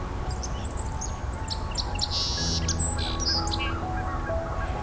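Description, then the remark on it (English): A song sparrow sings a bright, varied series of chirps, buzzy trills and clear notes, loud, over a low steady background hum with no talking, beside a creek not far from an expressway. “But the song sparrow's the loud one here.”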